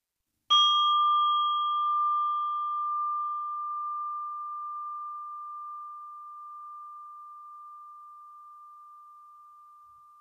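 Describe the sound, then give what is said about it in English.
A single meditation bell is struck once at the start of a meditation practice, giving a clear, pure ringing tone with a bright overtone that slowly fades over about ten seconds of otherwise silence. “And I'm inviting the bell as an invitation for you to concentrate on your practice and specifically your breathing for the moment.”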